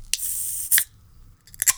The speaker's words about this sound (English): I got so animated talking just now, I'm afraid I shook the beer up and it's going to explode everywhere.